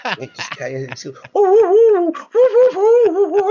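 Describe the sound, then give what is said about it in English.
After a few quick spoken sounds, a person lets out two long, loud, wavering howls in imitation of a wolf, strained and pained rather than smooth. “And then he like howls, but he doesn't do the howl in like a cool way. He kind of howls as if like a scorpion just stung his toe, you know?”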